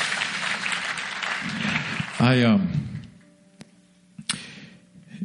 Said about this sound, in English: You can give him a encouraging applause.